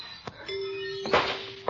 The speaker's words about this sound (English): Why don't you put a stopper on that door, Peavy, so it won't bang? You must be a little on edge. You never noticed it before. How long has it been that way? Every summer for 23 years.